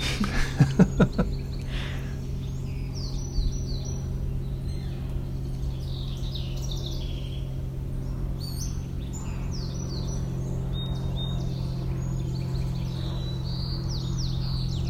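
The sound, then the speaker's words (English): A song sparrow sings bright, chirpy phrases repeatedly over the steady low engine drone of a float plane and outdoor ambience; no one speaks. “I hear a float plane. And a song sparrow.”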